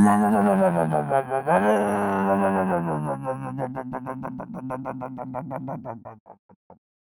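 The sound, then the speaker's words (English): A voice imitates a revving vehicle engine: a loud, buzzing growl that dips and surges, then breaks into rapid, regular sputtering pulses that slow and trail off. “What kind of vehicle was that?”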